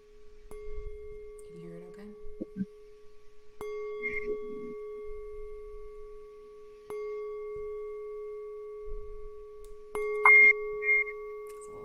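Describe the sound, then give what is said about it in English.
A struck singing bowl rings one steady mid pitch with shimmering overtones, sustaining throughout and struck again about three times, with faint handling knocks and brief vocal sounds underneath. “I'll just go grab this bowl and I will hit just this one pitch”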